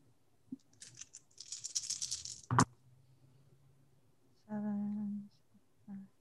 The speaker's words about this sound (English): I'm going to roll me your stamina plus your resolve. Do I use any paradox dice on this? No, this is just a normal roll. This isn't magic.